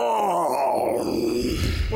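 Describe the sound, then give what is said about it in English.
A person vocally imitates a bear's big yawning roar, one sustained, loud, drawn-out groan that starts higher and falls into a rough, growly low rumble. “you see Braldir behind Atlas, like, let out a roar. But it's also a yawn, but, like, to you, it's a roar”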